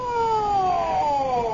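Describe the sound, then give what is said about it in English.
An ambulance siren wails in one long, steady tone that slowly drops in pitch, fairly loud, with no voices over it. “What's the ambulance for?”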